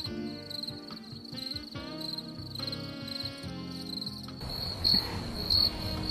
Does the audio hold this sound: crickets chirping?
yes